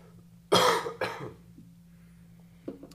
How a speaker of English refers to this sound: You know, this coughing is really inconvenient.